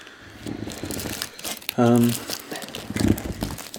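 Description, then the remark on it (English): Crackly crinkling of a chocolate wrapper being handled while eating chocolate, in irregular bursts over a few seconds, with a short voiced sound cutting in midway and faint background murmur. “And now, not only do you get to hear us burping and drinking, but also you get to hear us rustling eating with chocolate.”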